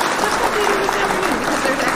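An applause sound effect played for Nancy Roman, a burst of steady, dense clapping from a crowd, loud and continuous for about two seconds, with no one speaking over it.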